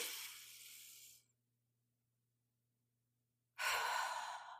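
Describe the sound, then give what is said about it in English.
A slow, deep breath drawn in, then a couple of seconds of held silence, followed by a long, airy exhale. No one speaks. “Then I do my breathing, slow inhale, hold, slow exhale.”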